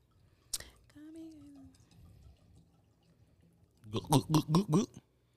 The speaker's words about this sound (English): Y'all hear that pour? And it's a Moscato, too.